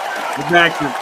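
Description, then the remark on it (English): Crowd applause fills the whole second as a steady wash of clapping, with a loud voice calling out over it partway through. “Generous crowd tonight. They're on fire.”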